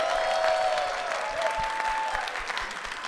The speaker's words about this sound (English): A round of applause